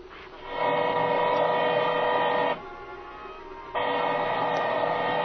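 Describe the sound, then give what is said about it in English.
A drill boring into metal whines steadily and loudly, runs for about two seconds, drops to a lower idle, then bites in again at full strength. No voices. “I can't hear nothing with my ear next to this drill.”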